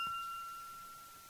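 A single glass clink rings out with a clear, sustained tone that slowly fades, heard faintly on its own with no talking.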